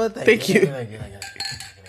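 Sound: glasses clinking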